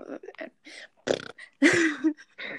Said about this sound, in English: I keep having to burp.